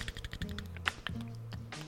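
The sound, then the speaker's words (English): Objects being shuffled by hand, a quick irregular run of light clicks, taps and rustles over about two seconds, with a low steady hum in the background. “Some motherfucking shuffle these things.”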